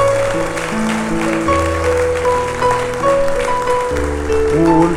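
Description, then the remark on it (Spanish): An audience applauds steadily in praise of the one who lives and reigns forever, a dense wash of clapping running under sustained keyboard or organ chords that shift several times, with no speech. “Dale un aplauso al que vive y al que reina para siempre.”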